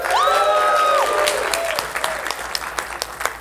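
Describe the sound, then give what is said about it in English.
A movie-screening crowd bursts into loud applause as the next film on the screen, Plan 9 from Outer Space, is announced, with a few whoops and whistles at the start, then the clapping thins out into scattered individual claps. “I couldn't have expected such a gigantic round of applause.”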